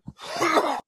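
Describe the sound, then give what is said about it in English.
A short, muffled grunt leads into one long, raspy hacking cough from a man's coughing fit, rough and breathy with a strained, groaning edge. It is fairly loud and stands alone with no talking. “I was able to mute him before his coughing fit really picked up.”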